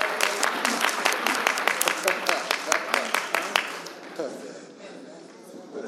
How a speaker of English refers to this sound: Yes! Now clap for me. Thank you.